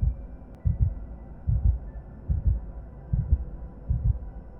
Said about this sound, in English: Listen for it. Thank her for all she provides for us on this planet. Now take your attention off of her heartbeat and focus on your own.